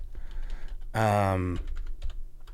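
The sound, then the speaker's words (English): Quick, irregular clicks of keys being pressed on a computer keyboard, fairly soft, interrupted midway by a brief voiced hum before the tapping resumes. “sorry, I'm typing in words that don't exist in this plane of existence.”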